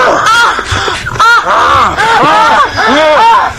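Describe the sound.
A voice imitating gasping for air lets out a rapid string of strained, gasping moans, each swooping up and down in pitch, loud, with barely a pause between them.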